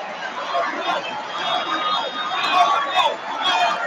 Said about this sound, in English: The American people cheering and chanting the name of someone whose homeland is Austria and who openly talks about being a dictator all the time?